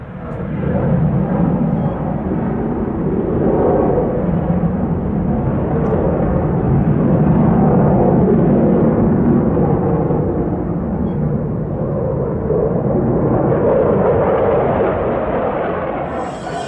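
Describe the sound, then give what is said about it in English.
A loud, continuous jet roar fills the whole stretch, swelling and easing slightly as training fighter jets pass low over a wildlife conservation sanctuary in Taiwan, with no voices and no quiet gaps. “War over Nature, jet fighters training over wildlife conservation sanctuary”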